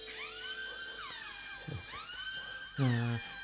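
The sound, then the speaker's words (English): A police siren sound effect, taken from the TV show Ironside, wails in repeated rising and falling sweeps, loud and steady, with a deeper low blare cutting in near the end; no voices. “Not only music, but actual sound effects taken from things like Ironside.”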